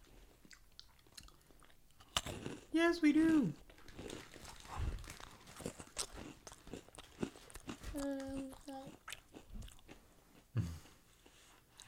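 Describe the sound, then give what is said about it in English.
Crunching of Japanese peanut ball snacks made with squid, with repeated crisp bites and chewing clicks, while people briefly talk in between. “Please don't crunch in my ear.”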